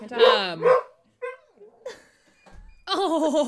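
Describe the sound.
A voice imitates a dog: two quick, harsh yelping barks, a few scattered short sounds, then a drawn-out, wavering, pitiful whine at the end.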